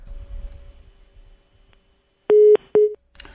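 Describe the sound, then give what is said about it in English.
A phone line's hang-up tone: two loud, short beeps at a steady mid pitch with a brief gap between them, following a stretch of low background rumble. “I would have hung up as well.”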